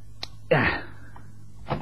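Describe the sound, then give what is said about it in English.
A chair tips and crashes over in the dark: a small knock, then a heavy wooden clatter that rings briefly, and a softer thud a moment later. No voices. “That's a neat trick, putting that chair in my way to fall over in the dark.”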